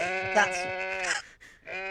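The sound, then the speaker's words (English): Two loud sheep bleats from sheep kept in a field, the first long and wavering, the second starting after a brief pause, with no talking over them. “I'm so stressed about my sheep.”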